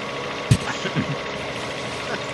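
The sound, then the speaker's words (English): A helicopter engine runs with a steady, broad mechanical roar, broken by a sharp thump early on and a few softer low pulses that fade back into the constant drone. The helicopter is being readied for a turkey drop, with live turkeys to be dropped out of it. “So we're getting ready for the first annual Weeby Geeks turkey drop, where we're going to drop live turkeys out of this helicopter right now.”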